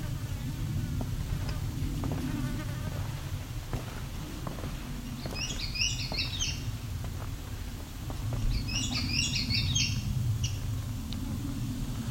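An Indigo Bunting sings a short variant of its song twice, each burst a quick run of high, doubled notes, over a steady low background rumble.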